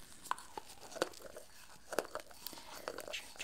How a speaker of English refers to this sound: just have you plop one of these in. Good. Chew that up.